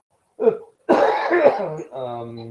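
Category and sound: human body sound, cough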